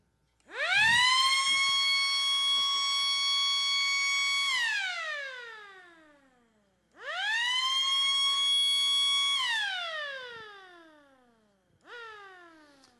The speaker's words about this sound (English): But it's not a gentle wake alarm clock, right? It's more like the kind of clock that most of us probably need. I think we've got an example of the clock that probably we need to wake us up. I'm hoping. Here we go.